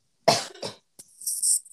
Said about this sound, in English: Okay, wait, I need to cough 1 second.